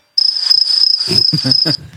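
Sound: cricket chirping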